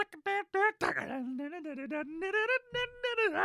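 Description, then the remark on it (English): A single voice does a vocal impression of lion dancing: a few short choppy bursts, then a rough growly swell leading into sustained, wavering sung tones that slowly climb in pitch, loud and unaccompanied. “That's my impression of lion dancing.”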